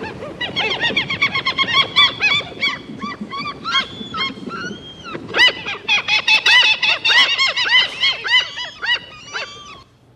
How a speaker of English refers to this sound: Ocean. The seagulls at the beach. And the sound gave you the clue of where that was. You can almost, if you love the beach, you've been there, you've heard those sounds. Maybe you can feel the power of the waves in a few seconds.